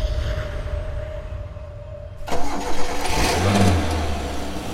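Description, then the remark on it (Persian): A 1948 Pontiac car engine cranks and catches after a quiet stretch with a steady hum, then settles into a loud, rumbling idle with a couple of revs. No talking. “مردی با ماشین پونتیاک مدل 1948، ساکن خیابان کاخ”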